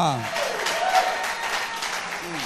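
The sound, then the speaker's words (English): An audience at a church service claps steadily for a couple of seconds to appreciate the Lord, a dense crackle of many hands, fairly loud, while a man's voice speaks briefly at the start and again at the end. “I thought you were going to clap and appreciate the Lord.”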